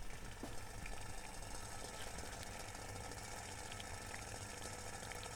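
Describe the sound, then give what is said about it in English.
Water coming to the boil, to be cooled and then transferred into a wine bottle, a steady low rumbling churn with fine crackling and ticking bubbles throughout, continuous and fairly quiet, with no voices. “It's getting to the boil now. Our water's getting to the boil.”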